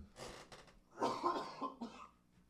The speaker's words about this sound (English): Take a break for 1 second. I'm going to cough. Sorry.